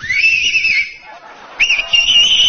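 A young man whistles with two or three fingers in his mouth: a loud, shrill whistle blasts twice, each a sustained piercing tone with a slight waver, separated by a brief pause with faint background murmur.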